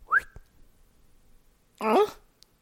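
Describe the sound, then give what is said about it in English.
A brief, rising whistle note sounds, then a pause and a short voiced, humming-like sound that bends in pitch, as if someone tries to copy the whistle by voice. “Oh, you can't whistle? No, I can. It just never comes out right.”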